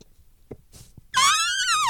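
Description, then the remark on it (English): After a quiet moment with a few soft clicks, a person lifting heavy weights makes an involuntary noise, forcing a strained exhale through tightly pressed lips: a loud, sustained high-pitched squeal whose pitch slowly sinks. “Because I'm pressing my lips together so hard, but I'm also breathing out.”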